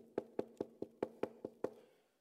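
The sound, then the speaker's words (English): Eight quick, evenly spaced knocks on an apartment door by its owner, come to collect the rent, crisp with a hollow wooden ring, followed by a brief fading echo and quiet. “Turned up at the end of the first month to collect the rent, knocked on the door.”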